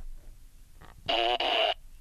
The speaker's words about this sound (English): Gotta get a better fart machine.